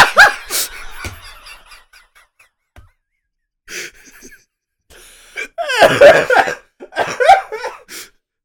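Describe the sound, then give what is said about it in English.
A fit of harsh, rasping coughs comes in several loud bursts separated by short pauses, building into a heavier cluster near the end, with strained breathy sounds between them. “Oh, my chest hurts from that cough.”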